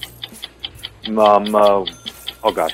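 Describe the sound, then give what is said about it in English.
A game countdown clock, set to 45 seconds, ticks steadily and quickly, each tick crisp and evenly spaced, while a voice speaks briefly over the ticking partway through and again near the end. “All right, 45 seconds on the clock.”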